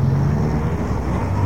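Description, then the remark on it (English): Steady rumble of busy town traffic, cars idling and moving in a continuous low drone with no pauses, fairly loud and with no voices. “Town is chock-a-block as usual. I'll never get a parking space now.”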